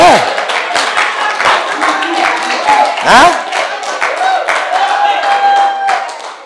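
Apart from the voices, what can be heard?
audience clapping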